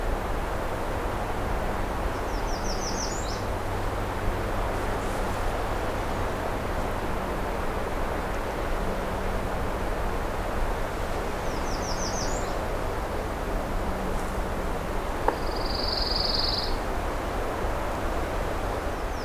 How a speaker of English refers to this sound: A pine warbler on the right. Stop for him for a moment. I believe it's only the males that sing, the pine warblers.